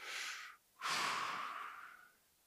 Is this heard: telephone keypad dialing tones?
no